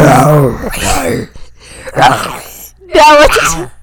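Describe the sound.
A person imitates a lion's roar with their voice: three loud, growling, breathy bursts with strained harmonics, each rising and fading, separated by short pauses.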